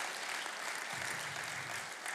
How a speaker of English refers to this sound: And I'd love it if we could give a round of applause to everybody who serves in the life of our community.